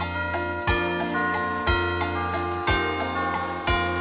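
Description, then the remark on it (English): A clock chimes four times, each ringing strike evenly spaced about a second apart, the bright bell tones sustaining and overlapping between strokes, with no voices. “The mouse ran up the clock. The clock struck four.”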